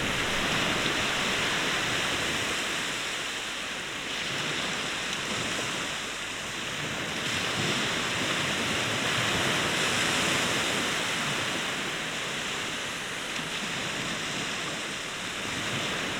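Steady, dense rush of ocean swell waves with a soft roar that gently rises and falls in slow swells, heard alone with no voices and no clear individual breakers.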